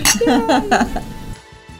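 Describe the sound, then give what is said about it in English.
A bright clink of glasses in a toast rings out, its tone lingering briefly while voices talk over it, then fades to quiet. “Cheers. Cheers.”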